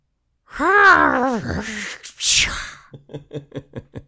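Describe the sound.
A voice makes a noise summing up a reaction to the film Godzilla versus Kong: a wavering, moaning monster groan with some influence of ocean, then a harsh hissing burst and a quick run of about seven clicky pulses mimicking glass smashing to the ground, ending in a peaceful sigh-type noise.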